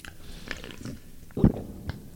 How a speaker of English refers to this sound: Ooh, that was fucking evil. That's really gross. That's bad. I held the microphone up to my throat and I swallowed.